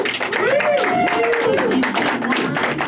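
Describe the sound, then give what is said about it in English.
A comedy show audience applauds with steady, dense clapping that stays loud throughout, while a few voices cheer and whoop over it, as the next comedian, from Ontario, comes to the stage. “Everyone, please put your hands together right now”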